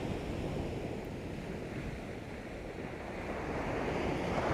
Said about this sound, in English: We might notice how there's a quality of peacefulness here in this landscape. That steady horizon and the gentle breeze and the lapping of the waves.